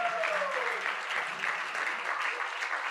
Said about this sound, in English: Let's give God a round of applause right now.